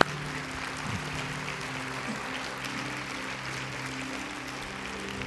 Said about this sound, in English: Let's give the Lord a clap offering together, shall we? Come on now.